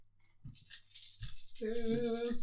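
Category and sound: dice being rolled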